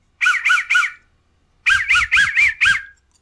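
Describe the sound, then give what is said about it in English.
A whistle is blown in short, squawky toots, a quick group of three, a pause, then five more in a steady rhythm, loud and warbling with no talking. “I have another whistle.”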